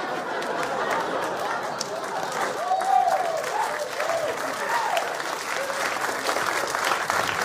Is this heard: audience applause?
yes